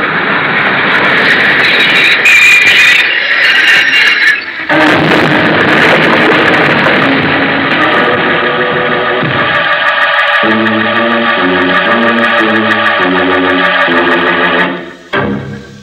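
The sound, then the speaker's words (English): The 11:55 train rolls in with a loud, steady roar and hiss of engine noise, its sustained tones droning on before a stepped, tonal passage rises underneath and the sound abruptly cuts off. “The train's come in.”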